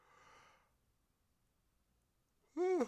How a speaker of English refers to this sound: sorry about the yawn. It's late or early.